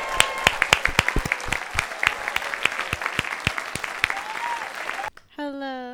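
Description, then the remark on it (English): An audience claps and cheers loudly for about five seconds, welcoming a guest introduced on stage, sharp individual claps standing out from a dense crowd roar, before it cuts off and a single voice starts talking. “Oh, the crowd was going nuts for were.”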